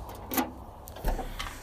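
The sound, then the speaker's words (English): A car trunk is opened to load recyclables and a shovel: a sharp mechanical latch clunk, then a second, lower thump as the lid lifts, against a faint background hum. “I'm opening my trunk.”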